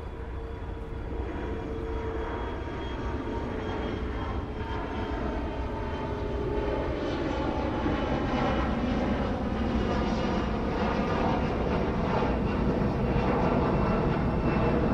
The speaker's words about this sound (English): And because we have these planes flying over, most of the land in North America is within like 2 miles of a road.